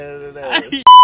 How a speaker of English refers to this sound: We'll bleep that out with Ricky.